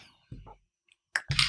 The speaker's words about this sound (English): What are you drinking? I'm drinking this. Okay. Tell me about it. So. He's taking a sip.